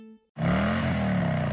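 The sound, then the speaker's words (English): After a brief faint tone and a moment of silence, the twin-cam 103 engine of a 2016 Harley-Davidson Rogue Glide Special motorcycle roars in loudly, its deep throaty rumble rising slightly in pitch as it revs and holds steady. “The 2016 Rogue Glide Special. With a powerful, high-output twin-cam 103 engine, big-time braking power, and Harley-Davidson Project Rushmore technology, from fairing to fender.”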